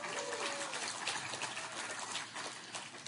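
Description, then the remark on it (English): An audience at Queen City Church applauds and cheers to welcome a guest speaker, a dense, steady wash of clapping that fills the whole clip, with a brief whistle-like tone rising and falling near the start. “We cheer for everybody but the power company here at Queen City Church”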